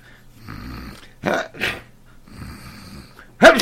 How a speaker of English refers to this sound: Gesundheit.